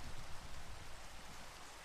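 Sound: rain falling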